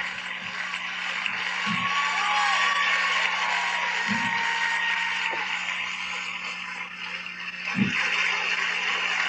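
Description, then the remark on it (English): An audience applauds and cheers for the late singer in a steady, dense wash of clapping that lasts about nine seconds, with a few whoops rising above it and no talking. “Of applause for …”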